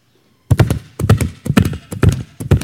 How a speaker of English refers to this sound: Horses.